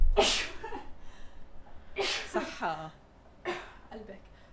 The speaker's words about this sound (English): Hold on, I have to sneeze.